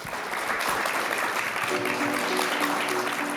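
An audience claps steadily after a talk at a CoLab event of the Barista Guild of Europe, a dense wash of applause holding at a constant level throughout, with faint murmurs and a few voices mixed in toward the end.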